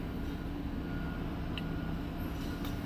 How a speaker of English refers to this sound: And there's a truck here. Oh, God.